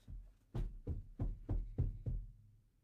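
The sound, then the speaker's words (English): Six heavy, booming bangs pound on a wall in a quick, steady rhythm, each a deep thud with a short rumbling decay, and no voices over them; someone is banging to scare away something behind the wall. “I'm banging, so it'll scare it away.”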